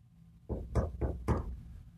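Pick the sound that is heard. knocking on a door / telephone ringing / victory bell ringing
knocking on a door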